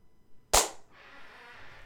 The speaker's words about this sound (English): Okay, here we go. So I'm going to do a clap.